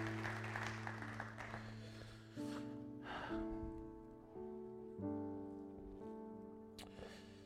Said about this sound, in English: Let's give God praise. Let's give God a hand clap for them.